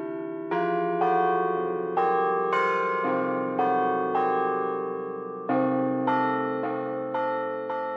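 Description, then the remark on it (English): The bells of the Purdue Bell Tower at Purdue University ring out in a loud, steady peal, each strike about half a second apart, their rich tones overlapping and lingering. No voices are heard. “Cheers to 25 years of the Purdue Bell Tower, which symbolizes the university's persistent pursuit to reach one brick higher.”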